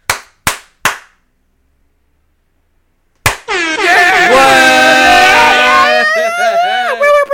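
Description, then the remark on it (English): Three sharp hand slaps and snaps ring out about half a second apart, then after a pause a loud, brassy synth-horn fanfare bursts in and keeps playing. “And I guess that's all that's left to do is slap it out and snap it out.”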